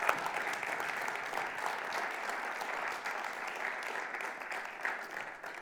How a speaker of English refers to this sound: And we want to give a big welcome to anybody that's either tuning in for the first time or joining us in the room for the first time this morning. Could we give them a clap to welcome? Thank you.